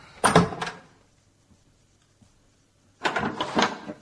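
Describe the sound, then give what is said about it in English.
A door opens with a brief rattling clatter, then after about two seconds of quiet it swings shut with a longer, fuller thud and rattle, with no talking. “I've tried all the doors. They all lead back in here.”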